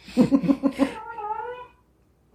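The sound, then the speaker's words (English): A territorial pet cat yowls, first a quick run of harsh, choppy cries, then one drawn-out wavering howl that fades into quiet. No one speaks. “Okay, we have cats. We'll just say that. Very territorial, food-consuming cats.”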